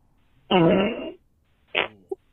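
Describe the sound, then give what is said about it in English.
A loud, drawn-out fart with a buzzy, rumbling tone, then a shorter, wetter-sounding second fart, a shart, after a brief pause, ending in a couple of small sputters. No one speaks. “There's a one loud fart that you hear, and then there's a second one after.”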